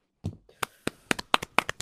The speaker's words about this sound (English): Why are you fucking clapping? That's terrible. The Amazon's on fire. You guys were clapping? Are you fucking kidding me? That is like shocking. No, I'm clapping because that was a very good comment.